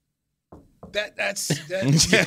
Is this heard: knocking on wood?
yes